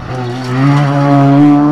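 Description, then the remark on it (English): An RX-7 Series 1 race car exhaust drones loudly and steadily, its harmonic engine note rising slightly in pitch as the revs climb, with no voices present. “Had one of those as an exhaust like that.”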